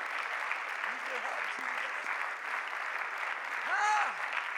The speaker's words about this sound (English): I feel a little Holy Ghost rising up. I wonder if someone would just clap hands to the Lord for a moment.